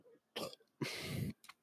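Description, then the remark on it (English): A loud burp lasting about half a second with a rough, throaty rasp, preceded by a short throaty sound and followed by a brief faint one. “Oh, sorry, I had a burp. Oh, wait, I feel another one coming.”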